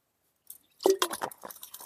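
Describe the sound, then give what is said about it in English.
Someone takes a quick sip of water: a soft slurp followed by a short run of quiet, wet gulping and mouth sounds, with no talking. “I'm just going to take a quick sip of water.”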